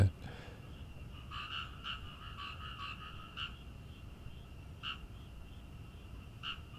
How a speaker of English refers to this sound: Man, hear those frogs.